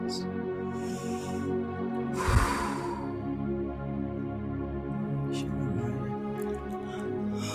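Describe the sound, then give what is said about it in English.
A long, drawn-out yawn, voiced and groaning throughout, with a sudden breathy gust of air partway through before it trails off. “To those that's listening, I'm not yawning because of sleep. I'm yawning because I'm so heavy.”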